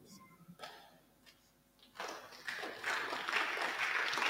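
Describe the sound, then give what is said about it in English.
After a couple of quiet seconds with a few faint knocks, an audience breaks into applause that swells and grows louder, a dense wash of many hands clapping through to the end. “I don't know why you are clapping.”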